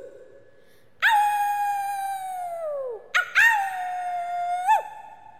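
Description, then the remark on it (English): Voices imitate wolf howls for a camera: a long, loud howl that slides down in pitch, then a short yelp followed by a second sustained howl, with no talking. “Howl for the camera.”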